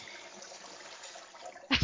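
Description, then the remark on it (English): A toilet flush: a steady watery rush and gurgle that swells into a louder, fuller surge right at the end, heard on its own with no talking. “I think we need to flush that.”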